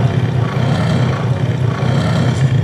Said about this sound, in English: You're literally doing that by just like pushing your thumb on the glove. Yeah, there's just a little pressure sensor in there, and I can hold the roar, the growl down for as long as I want, so you can.